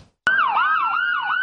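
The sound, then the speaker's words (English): An ambulance siren wails loudly in Southern California, its pitch sweeping up and down in a steady repeating cycle after a sharp start, with no voices present. “The sirens wail and ambulances in Southern California hurry up and wait.”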